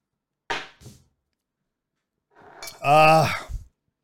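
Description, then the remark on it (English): A short, bright clink of shot glasses knocked together in a toast, ringing briefly, then a pause before someone lets out a loud, satisfied vocal exhale. “This is just an excuse to drink. Hey, cheers, guys.”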